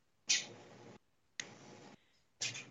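Rapid computer keyboard typing while going to the WWE Shop website, in three short bursts, each a dense flurry of clicks that starts sharply and stops abruptly, separated by brief pauses. No one speaks.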